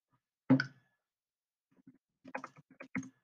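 Computer keyboard keys clicking as someone looks up the UNC quarterback: one sharp tap, a short pause, then a quick irregular burst of several typing clicks. No one speaks.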